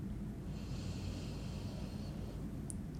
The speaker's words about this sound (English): Let's take a deep breath in together. Hold it at the top and let it go. Taking a deep breath in.